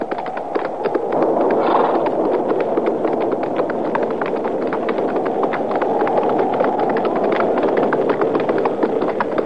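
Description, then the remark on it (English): Horses' hooves clip-clop steadily in an uneven, continuous patter as the horses are ridden, beneath a loud, constant rush of wind, with no voices, the clopping partly masked by the gusting noise. “Now, let's ride around to that side, out of the wind.”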